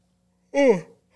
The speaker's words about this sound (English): I saw you yawning. What the fuck? Then you made me yawn, dog.